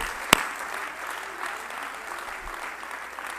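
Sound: audience clapping hands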